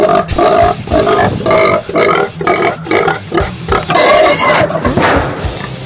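Loud pig grunts and squeals come in a rapid, rough series of bursts, overlapping into a dense, continuous chorus with no talking.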